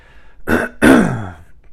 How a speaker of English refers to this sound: Now, I want to read you some scriptures before I start my testimony, but once again, I want to apologize for the coughing and the clearing my throat. Like I said, this is pollen season in Georgia,